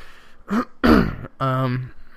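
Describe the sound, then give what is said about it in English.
A loud throat clearing in a few rough bursts, a short hack, a longer gravelly rasp, then a final voiced grunt, with no talking around it. “Clear my throat here.”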